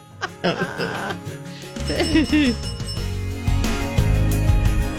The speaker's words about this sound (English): Listen to how smooth this bed is. And then you add a little sleigh bell in the background.